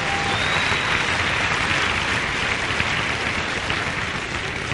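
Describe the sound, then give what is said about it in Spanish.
Sustained audience applause, a dense, steady wash of clapping hands that stays loud and even for the whole stretch, with no voices standing out above it. “Un aplauso para ellos y para todos ustedes por estar aquí.”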